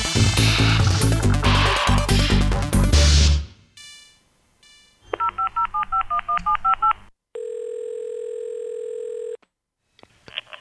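A quick run of about a dozen crisp telephone keypad tones beeps out after a burst of music fades, followed by a steady two-second electronic phone tone, then quiet.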